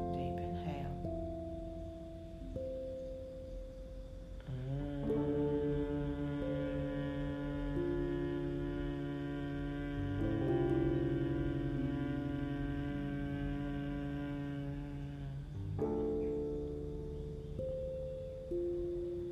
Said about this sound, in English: The humming breath, such as the sound of Om, which ends up in that frequency and vibration inside of us, are known to activate your pineal gland, stimulate.